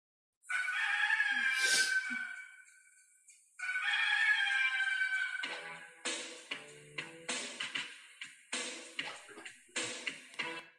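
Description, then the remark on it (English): A rooster crows twice, long and loud, each call stretching a few seconds, and then a punchy, rhythmic music track kicks in with regular beats and no voices. This is the wrestling entrance theme of the Red Rooster, Terry Taylor. “Oh, my Red Rooster. this theme is terrible.”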